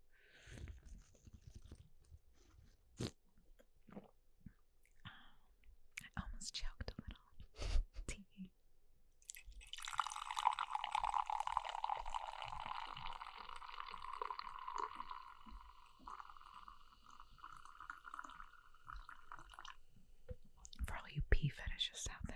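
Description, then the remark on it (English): Sustained slurping of a drink from a can, a steady wet hiss lasting about ten seconds, preceded by scattered taps and clicks, with soft whispering around it. “Just slurp it for a second.”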